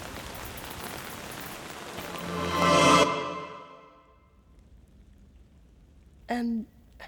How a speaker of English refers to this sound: It's just through the woods. Follow me. Oh, it's starting to rain.